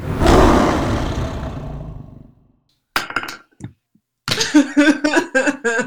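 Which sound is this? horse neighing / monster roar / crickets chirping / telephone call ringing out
monster roar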